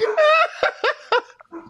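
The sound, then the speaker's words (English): A dog barks several times in quick succession in the background, loud, opening with a drawn-out whining yelp followed by short, sharp barks that trail off into softer yips. “He got my dog over here barking in the background.”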